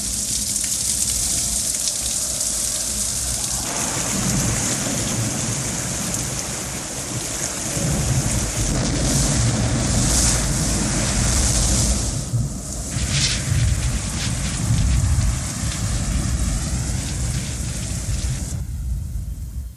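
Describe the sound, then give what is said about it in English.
A heavy, torrential downpour roars steadily and loudly throughout, dense hissing rain with deep rumbling undertones like thunder, no voices present. “And they reign and reign and reign. The deluge.”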